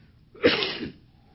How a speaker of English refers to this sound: Would you forgive me? Coughing?